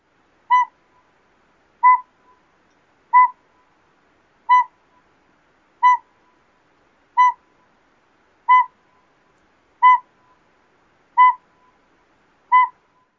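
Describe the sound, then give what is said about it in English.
A northern pygmy owl gives a steady series of ten clear, single-pitched toots, evenly spaced about one and a third seconds apart, heard alone against silence. “Then the northern pygmy owl.”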